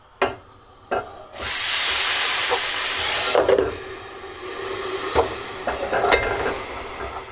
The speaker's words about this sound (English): So, well, I am going to steam it a bit. Oh, he's back on the steam.